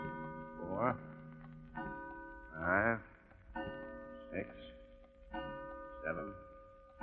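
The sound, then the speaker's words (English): A clock in a study chimes eight o'clock with eight slow, evenly spaced bell strikes, each ringing out and lingering before the next, moderately loud. “8 o'clock. Well, we'll soon know.”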